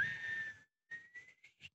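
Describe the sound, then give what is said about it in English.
A person whistles a thin tone that climbs upward in pitch, starting with a held note, then a brief gap and several short rising bursts. Fairly quiet, with no talking. “And that is an upwards whistle.”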